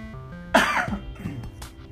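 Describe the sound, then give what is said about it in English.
A single sharp cough from a speaker reading Bible verses aloud, followed by a short rough throat-clearing rasp, over a faint steady background hum. “Excuse my cough.”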